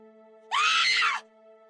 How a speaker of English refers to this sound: I remembered how to scream.